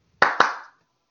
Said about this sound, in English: Hey, one of you guys clap. See if it works for me.